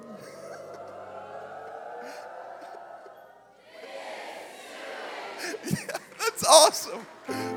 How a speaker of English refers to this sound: This morning was the first time in my whole life that I have ever heard the phrase, woo pig suey. I'm telling the God's honest truth. Woo pig suey. Is that a thing here? Is that a thing? What does it sound like? Some of y'all are doing it right now.